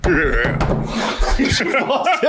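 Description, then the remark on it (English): A door rattles and thumps as someone struggles with it and pushes it shut, the loud knocks mixed with laughter and voices throughout. “You need me to help you close that?”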